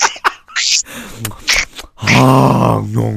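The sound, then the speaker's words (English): A voice imitates exaggerated, over-the-top heavy breathing like film dubbing: sharp breathy huffs and gasps, then a long, loud, drawn-out voiced groan, theatrical. “But it's even like, this is the dubbing where you've, instead of just going like, you've just got like over the top breathing.”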